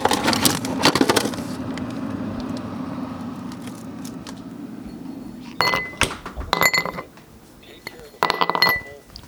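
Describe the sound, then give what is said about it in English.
Ice cubes clink against the sides of a glass of Bell scotch in a few short, bright bursts, fairly crisp, with a low background hum early on. “A sound that is quintessentially my nanny is the clinking of her daily bell scotch and ice cubes.”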